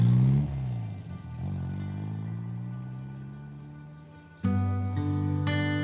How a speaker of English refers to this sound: They drive away to find some privacy.